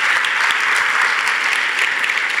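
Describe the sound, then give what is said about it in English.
Sustained audience applause, a dense steady wash of many hands clapping at once, loud and even throughout with no voices rising above it. “So if you would, just join me in a round of applause.”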